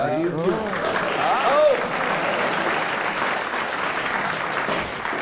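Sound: audience applause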